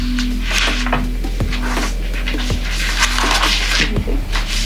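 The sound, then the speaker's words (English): Papers rustle and slide across a tabletop in uneven bursts as two people pause and shuffle papers, with a few soft knocks and a steady low hum underneath. No one speaks. “pause and shuffle some papers.”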